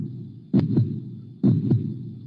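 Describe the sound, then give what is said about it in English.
A loud heartbeat sound effect thumps twice in a steady lub-dub rhythm, each beat a pair of deep, muffled pulses over a low, constant hum, with no voices. “Can you hear my heart beating?”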